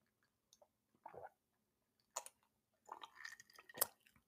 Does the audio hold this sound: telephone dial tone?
no